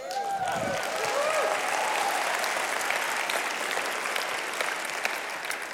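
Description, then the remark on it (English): A church audience breaks into sustained, dense applause for Jesus that stays steady and loud throughout, with a few raised voices cheering over the clapping near the start. “So if you want to clap for Him, go ahead and clap for Him.”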